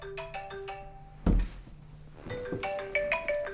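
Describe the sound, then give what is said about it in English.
A phone ringtone plays a bright melodic pattern of tones, briefly interrupted by a dull thump, then the ringing melody resumes, clear with no talking. “Do I have my phone in my pocket?”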